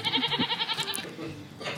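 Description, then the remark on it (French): A goat bleats once, fairly loud, its voice wavering in a fast trembling vibrato for about a second before tailing off into a softer, breathier finish. “Et ben alors, t'as la voix qui chevrotte d'un coup.”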